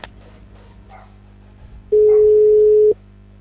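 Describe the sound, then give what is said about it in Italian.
The caller's own dog barks a few times, faint, while a steady telephone ringing tone sounds for about a second over a low background hum as a phone call is placed. “Sento un cane che abbaia.”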